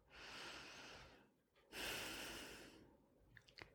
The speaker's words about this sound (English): It is a skill which takes time to learn, and is so worth learning. So let's practice breathing.